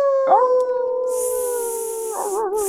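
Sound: person imitating a howl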